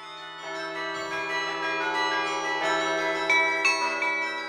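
signal or alarm, church bells ringing

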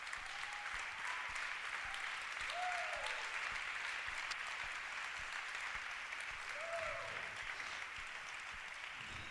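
crowd, audience applause

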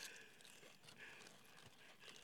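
food or drink, crunching chips

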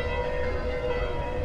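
signal or alarm, church bells ringing

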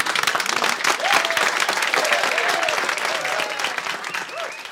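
crowd, applause

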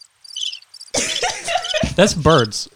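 insect, cricket chirping sound effect

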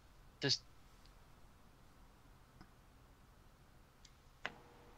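sound effect, clock-like ticking

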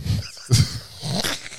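animal, dog growling and snorting

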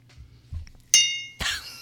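household object, glasses clinking together

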